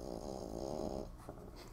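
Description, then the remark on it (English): A small dog snores or purrs, a steady low rumbling drone for about a second, then softer snuffling breaths trailing off. “They purr like a cat. I know, they are cats.”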